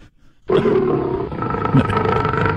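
After a brief moment of quiet, a lion lets out a loud roar that rumbles and growls continuously for about two seconds, rough and throaty throughout.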